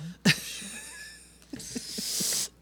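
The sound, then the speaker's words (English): A single sharp, explosive sneeze bursts out at the start, its voiced tail fading away, followed by some faint shuffling and a long hissing breath. “God bless you. Thank you. That was a good one.”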